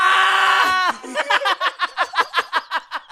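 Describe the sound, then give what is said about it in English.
A loud, sustained high-pitched scream from several voices lasts almost a second, then breaks into a quick rhythmic string of about ten shrieking, laugh-like bursts. “We all screamed. Everybody screamed.”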